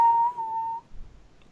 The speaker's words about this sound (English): Something big to remember about whistling is that it tends to be easier to go inward.